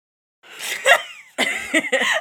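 A loud, breathy yawn rises and then slides down in pitch, followed by a few shorter voiced exhalations that trail off with no one speaking.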